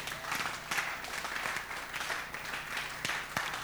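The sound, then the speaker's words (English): An audience claps steadily, many hands forming a dense, continuous patter with a few sharper claps standing out, fairly loud, with no voices above it. “God bless all those who are clapping and ministering to your soul.”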